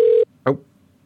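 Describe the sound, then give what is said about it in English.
An outgoing phone call: a steady electronic ringing tone sounds briefly and cuts off, followed by a short sharp burst of noise on the line, then near silence. “I'm calling his phone now, okay?”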